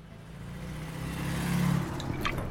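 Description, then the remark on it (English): A car engine starts up and revs, its low droning hum rising in pitch and growing louder over a couple of seconds, with no one speaking. “Get the car ready.”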